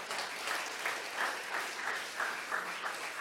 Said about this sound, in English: That's the applause part right there.